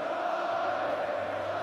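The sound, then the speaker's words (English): A huge stadium crowd supporting Ireland sings a song together in unison after Ireland's win over South Africa, a dense, steady wash of thousands of voices holding a sustained tone at constant loudness, with no music or speech over it. “Just not shutting up and letting the crowd sing a song in unison as they drop the music behind it.”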